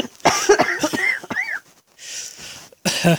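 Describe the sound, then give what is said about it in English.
A loud fit of several harsh coughs in quick succession, some with a raspy voiced edge, then a noisy breath and one last forceful cough. “I think you like me coughing too much.”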